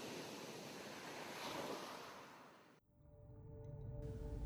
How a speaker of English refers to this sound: The ocean was lying calm before Cadian. The characteristic humid heat of Sulasar was ruling the day, but from time to time, a gentle breeze rolled in from the ocean, continuing towards Sabahari.